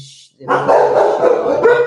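animal, dog barking

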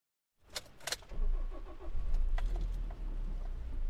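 vehicle, car engine starting

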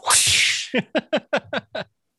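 sound effect, whip crack sound effect

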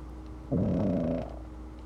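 animal, dog making noise

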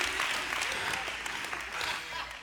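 crowd, light polite golf-clap applause

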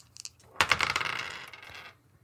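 dice being rolled

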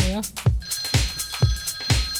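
household object, telephone bell ringing

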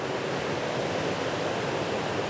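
nature, heavy rain falling

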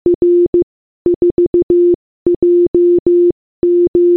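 signal or alarm, morse code beeps

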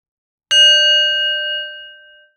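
signal or alarm, meditation bell being struck

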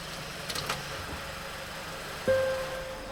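vehicle, car engine running

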